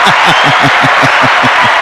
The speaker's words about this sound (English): Give the people a round of applause for the Lord Jesus. Give him. There you go.